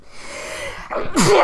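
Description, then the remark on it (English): A single loud sneeze bursts out after a brief inhaled build-up, sharp and breathy with a quick wheezy tail. “Bless you.”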